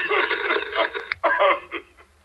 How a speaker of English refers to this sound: I hear voices behind you. Sounds like interference.